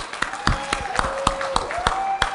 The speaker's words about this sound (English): It says, clap your hands, all you peoples.